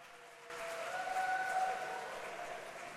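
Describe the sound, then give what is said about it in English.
A church audience breaks into steady, dense clapping as a woman comes up to give a testimony, after a brief half-second lull, the applause holding at an even level throughout while a faint sustained musical tone hums underneath. “Clap your hands for her as she comes up.”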